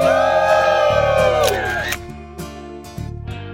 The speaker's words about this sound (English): Awesome crowd out there. A lot of parade fun out there and a huge, huge number of people here to meet Craig Melvin.